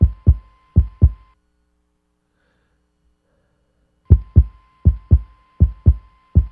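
Deep, muffled double thumps like a heartbeat, made by pushing in the bottom of a small plastic trash can: two lub-dub pairs, a silent pause, then three more steady pairs, fairly loud.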